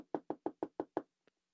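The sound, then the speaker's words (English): Someone taps on a window around midnight: six quick, evenly spaced, crisp taps, followed by a pause and one soft final tap. No one speaks. “there was Henry tapping on John's window.”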